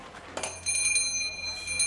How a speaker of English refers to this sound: I hear the bell of the front door before I've even turned on the stove for the day.